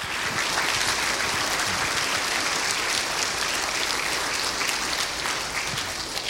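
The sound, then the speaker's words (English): A crowd in a room applauds the fathers among them steadily for about six seconds, a dense, even wash of many hands clapping at constant loudness with no voices standing out. “You guys just rivaled Johnny Carson with that applause.”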